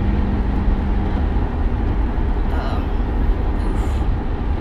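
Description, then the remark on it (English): A truck rumbles past in traffic, a loud, steady low roar of engine and road noise that stays constant throughout, with a faint brighter swell partway through. “Truck is just making it.”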